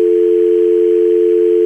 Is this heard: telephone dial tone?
yes